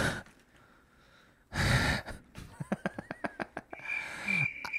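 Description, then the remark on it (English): A voice imitates a fart that sounds like an old man's emphysema wheeze: a loud, rasping gasp, then a rapid train of short, choppy breaths under a thin whistling tone, ending in a long airy hiss. “Would sound like an old man with emphysema.”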